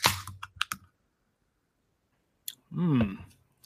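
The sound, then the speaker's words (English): A few sharp clicks and a snap as a can of Leinenkugel's Lemon Haze IPA beer, from the brewery in Chippewa Falls, Wisconsin, is cracked open, then a pause before a short slurping sip and swallow. No one speaks. “So let me crack it open here and give it a sip.”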